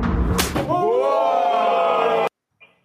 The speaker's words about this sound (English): Well, he knocked the tattoos right off his face. We know that's chalk, but yeah, slapped the foundation right off his face.